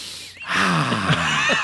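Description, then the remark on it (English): A voice mimics labored, wheezy breathing with a long, noisy, raspy intake that swells loud, catching with a couple of strained pitch wobbles before trailing off. “I walk through the valley of the shadow of death. And I'm breathing.”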